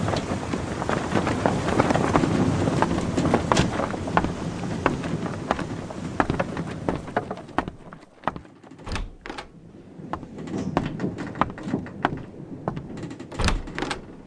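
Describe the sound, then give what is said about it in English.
A storm howls over a rocking ship at sea: a loud, steady roar of wind with scattered knocks and creaks, easing after a few seconds into sharper thumps and gusts. No one speaks. “The ship seems to be rocking more than usual. The captain said we're going to be in a very big storm soon.”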